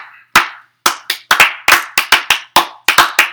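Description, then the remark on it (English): A dozen or so loud, sharp hand claps in an uneven rhythm, some quick pairs and some short pauses between them, with no talking. “Like, because we're not clapping at the fact that he's a deadbeat baby dad”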